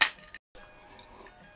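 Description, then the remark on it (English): Glasses clink together once in a toast, a bright ringing chime right at the start that fades quickly. After it comes a short silence, then soft, low room noise. “Another cheers.”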